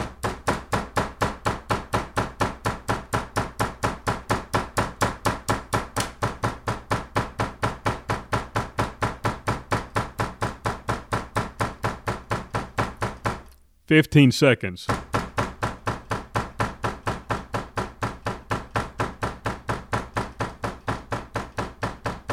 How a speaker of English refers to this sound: It doesn't sound that long, but if you actually pound on a door for 30 to 45 seconds, it's a long time.